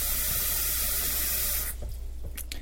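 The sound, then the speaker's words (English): Tap water runs steadily into a sink, filling it for a cat to drink from, with an even rushing hiss, then cuts off abruptly, leaving a few faint drips and trickles. “He loves when I fill the sink with water, then...”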